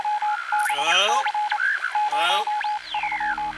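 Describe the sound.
A crackly radio transmission on the guard frequency: a steady hum-like tone under constant hiss and fuzz, with warbling, distorted voice fragments with a strange accent rising and falling through the static, fairly loud and continuous.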